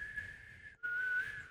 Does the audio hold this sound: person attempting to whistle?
yes